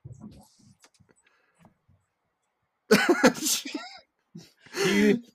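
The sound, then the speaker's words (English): A sudden dog-like noise bursts out after a near-silent stretch: a harsh, breathy yelp followed moments later by a wavering, whiny cry, both loud. “John heard a ghost. What just happened? Ghost dog.”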